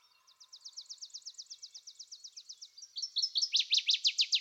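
A northern waterthrush sings clear: a long, rapid run of bright, sliding notes that builds into a louder, emphatic burst of down-slurred phrases at the end, with no voices.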